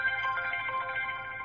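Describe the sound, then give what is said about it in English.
A phone that is not on silent rings, a bright electronic melody with sustained tones, fairly faint, with no one talking over it, before the call is declined. “And I apologize if you just heard a phone ring.”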